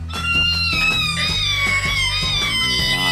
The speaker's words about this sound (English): That's one of them screeching metal sounds I was talking about earlier, man.